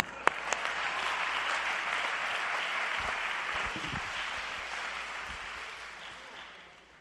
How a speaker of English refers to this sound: I didn't put my mic down for you to clap. I just wanted to adjust my pants here. But if that's the sign, let's do it.